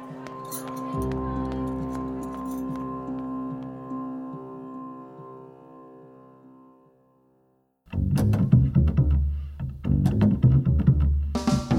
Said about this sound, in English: With each step, the knives inside the bundle let out a soft clink.